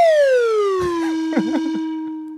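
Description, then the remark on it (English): A sad descending whistle sound effect: one long, bright tone sliding down in pitch, then holding low and fading. A few brief, faint murmurs flicker beneath it midway. “That's the sad whistle.”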